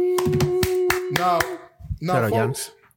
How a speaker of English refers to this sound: Clap it up for Giannis, y'all. Clap it up for Giannis.